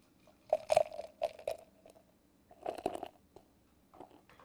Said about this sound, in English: So, here we go. The 2020 Bourbon County Stout. Here's the pour.